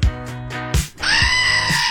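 A goat bleating sound effect played during the morning shout-outs on Z104 radio: two loud, wavering cries, the second a long, strained, nasal bleat holding a steady quavering pitch until the end, with no talking.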